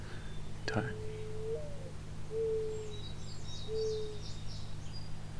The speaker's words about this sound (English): It's a fairly quiet bird in general, the species, when it sings. Very low pitched.